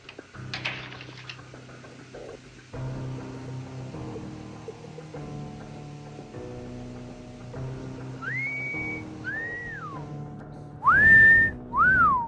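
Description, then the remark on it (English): A person whistles a few short, sliding notes near the end, the last ones louder, after a stretch of quiet sustained tones with no talking. “Oh, maybe just whistle. You know how to whistle, don't you, Steve?”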